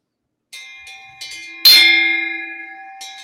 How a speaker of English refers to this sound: Get a little bit of gong sound there.